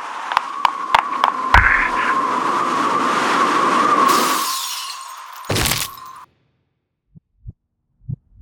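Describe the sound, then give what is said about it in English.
Ambience on top of a 13-floor apartment building in a city: a steady windy rush with a droning hum and a few sharp clicks, a loud burst, then sudden silence broken by a few soft thumps. “Sound of being on top of a 13-floor apartment building.”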